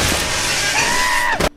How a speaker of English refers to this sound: And when he first meets him, this is really fucking short, but this scream is absolutely amazing. It really sounds like it was ripped straight from The Simpsons, but no.